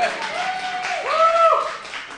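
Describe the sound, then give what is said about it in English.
An audience claps after a comedian says he turned 25 today: a steady, dense wash of applause, with a couple of rising, wavering cheers or whistles cutting through the middle before the clapping thins slightly at the end. “You don't need to clap for that.”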